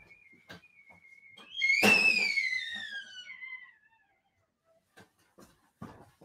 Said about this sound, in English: I got to take my tea kettle off. Give me a second. I can probably hear it whistling.